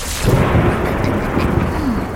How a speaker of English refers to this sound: Nilo Nimbus Cloud. Thunder!